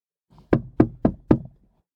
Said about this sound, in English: Police sirens rang out, and I later heard that as the policeman knocked on the door, there was silence.